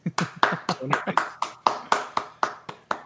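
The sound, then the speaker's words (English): A quick, steady run of about a dozen sharp hand claps, loud and crisp, evenly spaced at roughly four per second, with no talking in between. “There's no need to clap.”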